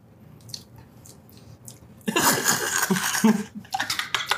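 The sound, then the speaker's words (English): Someone slurps a soda during a blind cola taste test: after a quiet stretch with faint clicks, a loud, wet, sustained slurp follows, then a quick run of shorter sipping bursts. “You sound like Freechin drinking water.”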